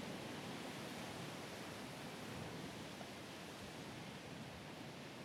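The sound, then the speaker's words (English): A steady, unbroken wash of rushing water, like ocean surf blended with a flowing stream, holding an even level throughout with no distinct swells and no voices. “Let the peaceful rhythm of the waves and flowing waters wash through you.”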